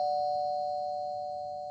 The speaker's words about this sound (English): I really didn't know we had a door in the studio with a working doorbell.